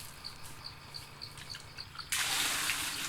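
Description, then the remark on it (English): Water suddenly starts pouring into a small container as a man fills it up using a little spittoon, making a little pool, a steady loud splashing gush that begins after a couple of seconds of quiet, regular high chirps resembling birdsong. “With that little fucking spittoon, he's just filling up the water.”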